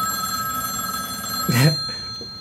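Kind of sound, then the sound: signal or alarm, telephone ringing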